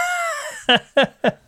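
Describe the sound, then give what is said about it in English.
Calls of large, dog-sized seagulls in Brighton: a long descending harmonic wail followed by three short, loud, evenly spaced squawks, harsh and bright, with no talking. “and I thought they might want to hear some sort of, you know, large dog-sized seagulls that we have in Brighton.”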